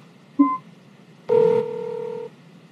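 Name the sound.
phone call being dialed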